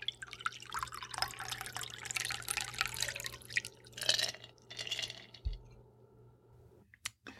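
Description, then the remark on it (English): A cocktail streams steadily from a shaker into a coupe glass for about four seconds, fairly quiet, then thins to a few drips and a faint clink before falling silent. No one speaks. “All right, let's pour this into a coupe and give it a taste.”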